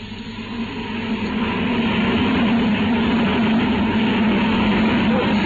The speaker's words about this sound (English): This is bitter wind, Watson.